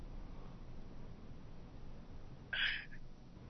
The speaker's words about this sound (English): I have a parrot who talks who has heard us talking and couldn't understand why I didn't have him by me. So, if you hear somebody talking, it's because my parrot is talking.